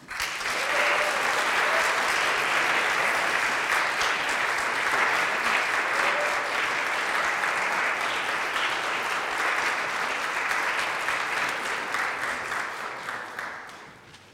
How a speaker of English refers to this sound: So we have a little giveaway from the nut shop for each of the three, and as I give them their chocolate boxes, I would ask you one more time to acknowledge them with applause.